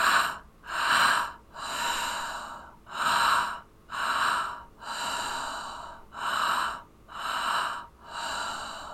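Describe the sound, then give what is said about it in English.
Rapid, rhythmic breathwork through the mouth, a steady cycle of two quick inhales, belly then heart, followed by an open exhale of the same size, repeated about nine times, fairly loud with no talking. “It's just belly, heart, exhale, belly, heart, exhale. So this is how it's going to sound.”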